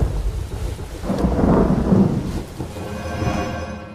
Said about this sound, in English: I'm not a really big fan of the rain, and I know how it feels to be diluted. Ugh, it's just gross.